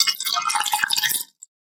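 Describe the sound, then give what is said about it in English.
Hennessy VSOP liquor is poured from a just-opened bottle to mix a drink, with a bright, splashy gurgle for about a second, then stops, followed by a tiny glassy tick. “I just heard a liquor bottle open.”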